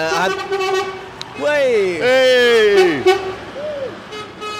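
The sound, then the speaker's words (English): A voice imitates the horn of an enormous food and drink logistics lorry in the street on a Monday morning, with a couple of loud, drawn-out toots that sag in pitch at the end, followed by a brief quieter vocal trailing off. “Is an enormous food and drink logistics specialist lorry, and the bloke gave Bimini a big wave”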